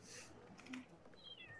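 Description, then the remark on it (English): A single high, thin kitten meow with a falling pitch rises near the end, faint, over a steady rushing wind noise, inside an old abandoned pawn shop. “There's a cat that meowed.”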